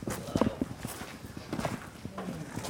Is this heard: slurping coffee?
no